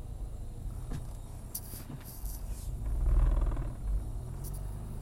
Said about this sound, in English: Kidding me, I've got to reverse back again now. I'm now reversing back up a road because this car's coming the other way.